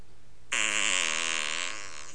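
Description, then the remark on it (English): A loud, buzzy fart sound effect from a soundboard button blares abruptly after a half-second of quiet, sustaining with a steady raspy tone for over a second before trailing off. “Forgive me, Father, for I have farted.”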